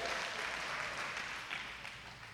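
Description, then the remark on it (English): Subdued, reluctant clapping from an audience at a prize drawing for a restaurant gift card, a soft steady patter of many hands that tapers off slightly toward the end, with no voices over it. “You're clapping reluctantly.”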